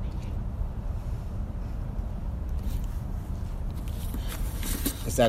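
A helicopter coming to pick up the speaker drones overhead, its deep, steady rumble filling the background throughout, with a few brief scraping and rustling noises rising near the end.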